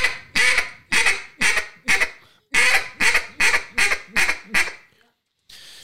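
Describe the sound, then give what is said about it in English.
A duck call sounds a loud bouncing hen sequence of about ten raspy quacks in a steady bouncing rhythm with a brief break partway, then a short final note after a pause. “The bouncing hen. And this is what that sounds like.”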